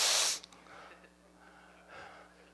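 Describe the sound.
A voice imitates Barney Fife's sharp, haughty sniff: a short, loud burst of breathy noise, followed by softer breathing sounds and a faint second exhale.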